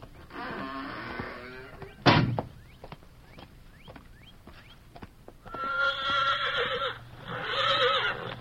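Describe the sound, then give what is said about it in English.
A horse waiting outside a prison gate whinnies loudly, then after a sharp thump and a pause with faint hoof clicks, it neighs twice more in long, shaky calls, with no talking. “There's someone waiting over there with a horse for you.”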